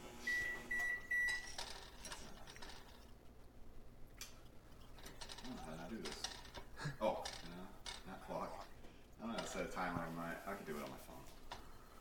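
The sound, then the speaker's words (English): A microwave keypad gives a quick run of short, bright electronic beeps at the start as a timer is being set on it, followed by faint mechanical clicking and then people talking over a low steady hum. “I don't know how to set a timer on my microwave.”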